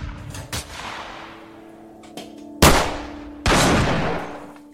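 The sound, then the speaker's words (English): Several gunshots ring out from outside, irregular bursts with the two loudest blasts near the end, each followed by a long echoing decay over a low steady background hum. “Then she puffed and inhaled rapidly, biting back pain as returning gunshots could be heard from outside.”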